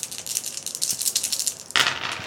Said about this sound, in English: So, make an intellect roll. Okay. That's gonna be 5. So, counting is hard. That's 5 dice.